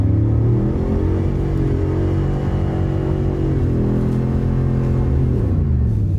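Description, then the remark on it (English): A 7.3 diesel truck engine drones loudly and steadily during a burnout that spins the rear tires and throws a lot of tire smoke, its deep rumble holding high revs with slight pitch shifts throughout, no voices present. “It is roasting the crap out of the rear tires. It doesn't sound like it. It's quiet inside. This is kind of uneventful. Just listen to the 7.3.”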